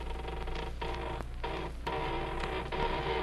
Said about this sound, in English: But suddenly I straightened up. The door to my office was slowly opening.